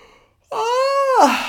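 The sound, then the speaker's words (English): A loud, drawn-out yawn begins abruptly after a brief quiet moment, a voiced, moaning sound held for about a second before its pitch drops away at the end. “That's a yawn, not an orgasm.”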